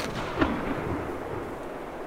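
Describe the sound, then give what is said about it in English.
A single sharp gunshot cracks out as a hunter shoots a wolf through the head, followed by a rumbling, echoing tail that fades slowly under a steady low background hiss. No one speaks. “You got him, Kid.”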